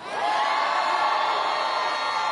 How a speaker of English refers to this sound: Biden, in addition to his yesterday in Virginia, he also did this. Hello, Virginia. And the real governor, Terry McAuliffe. Hello? The crowds, listen to the crowd's reaction there.